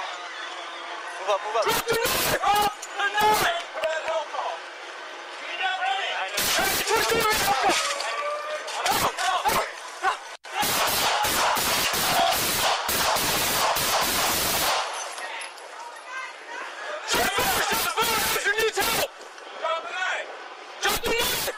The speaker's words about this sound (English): And you can hear them shooting beanbags, beanbag ready, as they order him repeatedly to drop his knife.